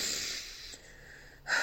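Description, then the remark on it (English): A breathy nasal sniff draws air in sharply at the start, then a short quiet gap before a second quick sniff cuts in at the end. No one speaks. “I probably can't even sniff in this podcast because some man's going to get off on that.”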